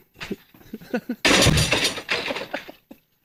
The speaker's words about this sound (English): Well, for those who want it, here's the audio. I'm throwing a chair.